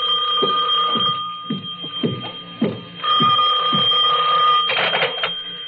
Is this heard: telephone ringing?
yes